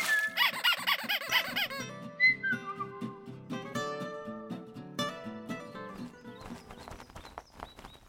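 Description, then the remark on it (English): A rubber duck toy squeaks several times in quick succession, its wobbly, high pitch loud at first, followed by light, bright melodic notes playing with no talking. “You want a rubber ducky in the bird bath too?”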